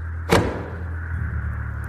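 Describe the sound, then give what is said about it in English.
An old woman firmly turns a key in the lock of a heavy oak door, releasing one sharp, loud click, followed by a faint ringing decay over a low background hum. “The old woman firmly turns the key in the lock, and a loud click echoes on the other side of the door.”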